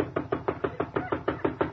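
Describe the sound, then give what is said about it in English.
A rapid, steady series of about ten firm knocks on a door, evenly spaced, with no voices. “Now, here I come. I'm waiting. Will you answer the door?”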